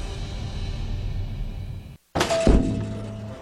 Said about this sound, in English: You okay, sir? I'm Jerry from C Spire, and you're banging your head against our store window.